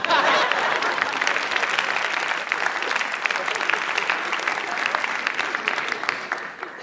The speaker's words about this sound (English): It's okay to applaud.